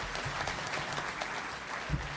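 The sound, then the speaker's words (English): Steady audience applause, a dense crackle of many hands clapping at once, sustained and moderately loud throughout with no voices standing out. “He feels better that you applauded him.”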